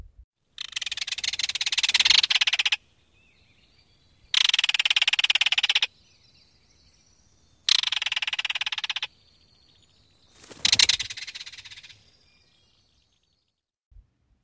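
A belted kingfisher gives its loud, semi-musical rattling call in four harsh, rapid-fire bursts of about two seconds each, separated by brief pauses, with no talking.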